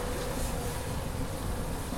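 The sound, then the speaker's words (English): A steady, droning rumble with a persistent hum from inside a moving old train carriage riding alongside the River Dart, constant and moderately loud with no voices. “Oh, come on, the train's talking to us now.”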